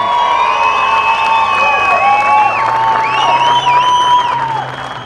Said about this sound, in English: And Ian salutes the crowd, and he gets an extra round of applause